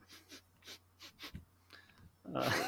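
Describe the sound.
A person imitates a dog sniffing as a Foley effect, with a rapid series of short, breathy nasal sniffs, ending in a louder, longer huffing exhale.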